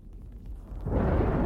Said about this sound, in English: A loud crack of thunder jolted me awake.